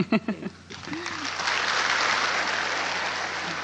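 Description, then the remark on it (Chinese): A brief bit of speech gives way to an audience clapping to welcome a spiritual master to give a teaching, a dense, steady wash of many hands that swells quickly and holds at an even level for about three seconds. “不会，你们不用拍手，我很快就讲完了。”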